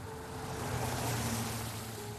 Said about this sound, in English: All of a sudden, you hear a car just whiz right by.